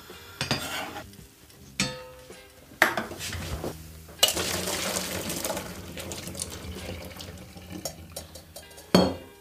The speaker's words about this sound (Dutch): Nou, ik heb dus nu wat ordinaire druiven uit de supermarkt. Een klein zoetje. Aangezien ze een beetje zoet zijn, ga ik ze nu klein snijden en doe ik er toch een klein beetje azijn bij. Dat doe ik ook in een bakje.